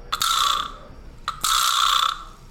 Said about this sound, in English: That's an actual physical. I have the instrument in my hand. It's called a vibra slap. And this is a sound effect they use on Drag Race a lot, which I love.